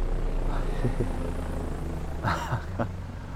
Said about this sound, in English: A helicopter. You know who likes flying those around.